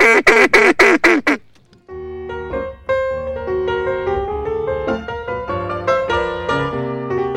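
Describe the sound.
People practicing duck calls blow a quick series of about five loud, nasal quacks, followed by a short pause and then instrumental music taking over.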